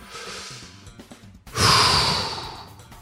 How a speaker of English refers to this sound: And again, this is a time to keep breathing, people. So take a deep breath. Do it with me.